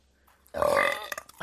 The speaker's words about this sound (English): It's a burp compilation.